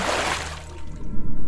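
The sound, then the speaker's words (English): A loud splash as a person takes a running start and leaps off the edge of a pool into the water, the broad rush of water fading quickly into a muffled, low underwater rumble. “Without thinking, my body takes a running start and I leap off the edge.”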